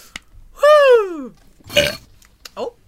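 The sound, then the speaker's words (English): A real, long, loud burp after a drink, with a falling pitch, followed by a short noisy burst and a faint squeak, with a noticeable echo trailing after it. “For anybody that is now listening to the podcast for like the first time or maybe it's their second week, that sound clip of the burp is actual.”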